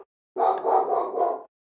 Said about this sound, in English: There goes the dogs.